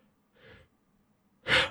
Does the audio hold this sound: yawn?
yes